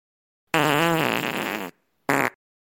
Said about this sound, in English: The elephant in the room had just dropped a fat fart at the expense of everybody else's embarrassment.